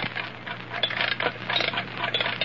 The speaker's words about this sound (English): Now, wind up that alarm clock and put it here on this lead table in the center of the magnetic field.